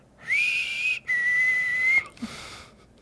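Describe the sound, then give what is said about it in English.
A person whistles two long, steady high notes, the first wavering slightly, each held about a second with a brief break between, imitating an eerie whistle heard on waking in the middle of the night. “I heard that whistle last night whenever I woke up.”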